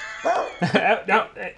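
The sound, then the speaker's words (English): A human voice imitates a dog barking at a newcomer, giving four short, harmonic woofs in a quick, uneven rhythm, fairly loud, with no other talking. “The dog barks at this new addition.”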